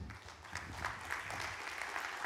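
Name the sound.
audience clapping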